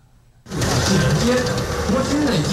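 After a brief quiet moment, the loud, grinding roar of M41A3 battle tank engines bursts in and rumbles on steadily with mechanical clatter as the tanks pass in formation before a command podium at their final military parade.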